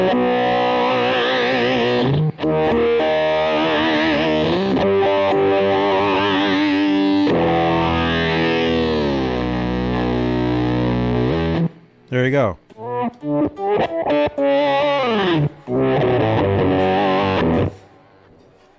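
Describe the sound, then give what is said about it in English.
A guitar run through an Electro-Harmonix Micro Synthesizer pedal, without delay, gives thick, buzzy, keyboard-like sustained tones that glide and shift in pitch, then breaks into choppy stabbed notes, with a brief spoken phrase near the end. “It's called the micro synthesizer. By Electroharmonix.”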